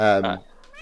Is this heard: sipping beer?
no